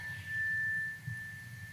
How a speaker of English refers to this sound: And on this third chime, let the frequencies come into each one of your cells, opening them, cleansing them, and allowing them to receive the frequencies of serenity that follow.